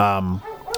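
A dog gives a single drawn-out, yelping bark, fairly loud, followed by a few quieter, muffled sounds in the background.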